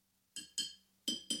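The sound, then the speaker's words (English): Four bright, ringing clinks of something tapping a glass soda bottle, fairly loud, landing in two quick pairs with a short pause between them and no talking. “You don't have to hit the glass every time. That's just making it fizz up.”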